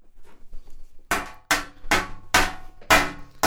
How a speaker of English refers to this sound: Hold on, I'm hammering something.